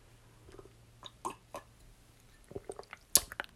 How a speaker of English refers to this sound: I'm gonna take a sip of tea.